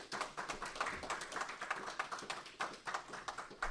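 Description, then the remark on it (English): An audience applauds the panelists after their presentation, a steady patter of many hands clapping at once that holds for several seconds, fairly soft, with no voices over it. “If you give them a big round of applause for their fantastic presentation.”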